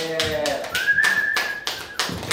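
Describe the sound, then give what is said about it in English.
Slow, evenly spaced audience claps welcoming a guest onto a show, about five sharp bursts in a steady rhythm, mixed with a voice at the start and a sustained high tone through the middle. “Please welcome, clap.”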